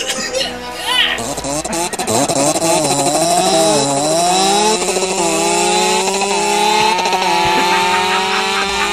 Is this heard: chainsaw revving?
yes